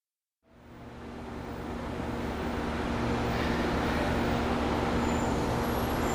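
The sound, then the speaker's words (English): A Disney shuttle bus ride: after a brief silence, a steady engine rumble and broad road noise swell up and hold, a continuous droning hum heard from inside the vehicle, with no talking. “So now we get to see what a Disney bus, how it works.”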